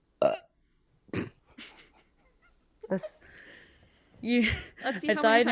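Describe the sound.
A loud burp directly into the microphone, followed by a couple of shorter guttural bursts and then people talking and laughing.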